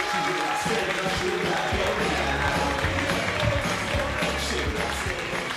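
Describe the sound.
An audience applauds and cheers steadily for several seconds to welcome a comedian on stage, a dense, continuous wash of clapping with voices mixed in, holding at an even, fairly loud level throughout.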